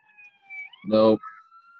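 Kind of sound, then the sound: vehicle, ambulance siren passing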